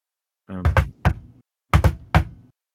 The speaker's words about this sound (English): You hear an irregular knock pattern at the door. Another enchantment, I'm assuming.